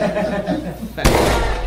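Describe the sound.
A single sharp gunshot sound effect cracks out about halfway through, following a stretch of muffled voices and chuckling, and leaves a loud noisy wash ringing after the bang.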